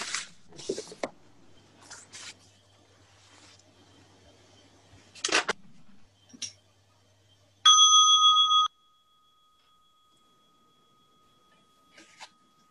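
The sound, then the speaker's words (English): After some handling clicks and rustles, a bright bell rings loudly for about a second, then is abruptly cut short, leaving only a faint lingering tone in near silence. “Is that a sacrilege to stop a bell from ringing?”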